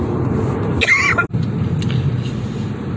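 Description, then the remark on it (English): A short, harsh coughing fit bursts out near the start, a strained throaty cough followed by a fainter one, over a steady rumbling background noise with no talking. “Sometimes I have these super weird coughing attacks that just come out of nowhere.”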